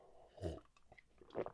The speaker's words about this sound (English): All right, hold on, let me have a sip of coffee here.